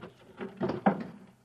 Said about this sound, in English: So the searchers figure out a way that they can get them alone in a hotel room. Shove a chair under the door now, Max.